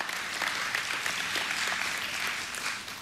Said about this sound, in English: Yeah, we should clap for that one.